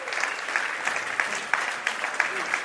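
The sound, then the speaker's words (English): A conference crowd applauding steadily, a dense wash of many hands clapping at once with occasional sharper claps standing out, sustained at an even level throughout. “Thanks for your applause.”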